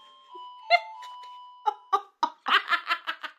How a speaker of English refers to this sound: I'm going to let my dog back in the house, because he has a doorbell.